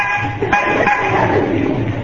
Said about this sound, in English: We'll stop here. Honk the horn. Maybe somebody will come out.